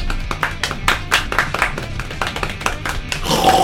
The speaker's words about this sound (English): Ladies and gentlemen, golf clap for the Warthog.